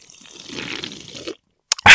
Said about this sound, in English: Would you like to do a nice Mountain Dew New Year's toast? Of course. With the dew. Do it for the dew. Here it is. Big sip in the mic.